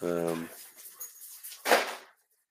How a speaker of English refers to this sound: Sorry, the dogs are going crazy.